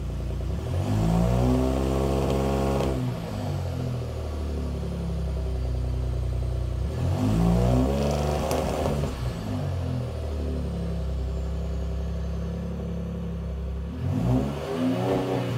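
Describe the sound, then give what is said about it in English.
A Ford Raptor's twin-turbo engine revs three times, each burst climbing and falling back to a steady, rumbling idle. Loud, with no talking. “let's go ahead and listen to one of these in a Ford Raptor”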